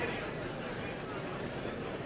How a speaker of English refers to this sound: You can hear the subway going underneath us, the Broadway line. That's probably like the R train or something, one of those yellow train lines.